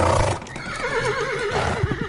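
A wild horse whinnies loudly, its wavering, trembling call sliding down in pitch over about two seconds, with faint hoof thuds near the end.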